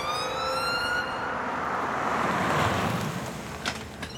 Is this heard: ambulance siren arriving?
yes